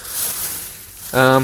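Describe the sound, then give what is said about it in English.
A plastic bag rustles with a steady, crinkly hiss for about a second, fairly loud, while food is being prepared for a recipe, before a voice begins speaking over the tail end. “Editor's note, I'm truly sorry for the plastic bag noises.”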